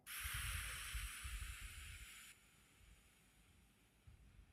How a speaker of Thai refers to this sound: คือหายใจเข้า4วิครับอ่ะหายใจเข้า4วิพร้อมกันครับสุดปอดปุ๊บอั้นไว้5วิครับอึ๊บและหายใจออกทางปากช้าๆ6วินะครับ